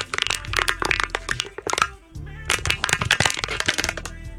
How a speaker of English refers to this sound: What are you crunching? Can. Were you looking for a joke? That can just got crunched.